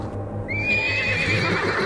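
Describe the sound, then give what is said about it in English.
A horse lets out a long, high whinny that rises and wavers, fairly loud, over a steady low clip-clop of hooves and a rumbling background. The horses have potato sacks fitted over them against a dust storm, a few miles from Gunston, as the sun comes up. “The potato sacks we fitted over our horses are sliding down.”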